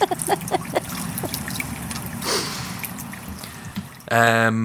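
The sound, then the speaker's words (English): A rain sound effect: a steady, hissing patter of rain with scattered drips runs for about four seconds, then cuts off abruptly as a louder voice comes in. “We could just put some rain sounds in.”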